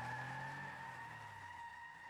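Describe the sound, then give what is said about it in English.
Car tires squeal in a sustained, high-pitched screech as the vehicle pulls away, with a low engine rumble underneath, loud throughout, and no voices. “I spun the wheel, pointed us towards the open road, and made for freedom.”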